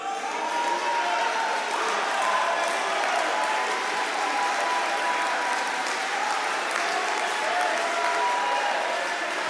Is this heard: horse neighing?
no